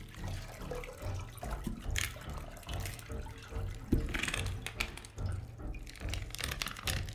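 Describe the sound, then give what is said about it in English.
Water splashes and trickles in irregular bursts as something soaked is wrung out with a crank, with drips and spatters falling. No one speaks. “One more crank, and you'll be all wrung dry. Every last drop.”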